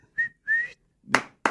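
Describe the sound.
Two short, loud whistled notes, the second longer and rising slightly, followed by two sharp, harsh bursts of sound.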